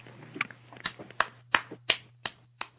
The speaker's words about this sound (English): Oh, I hear applause. It's just me.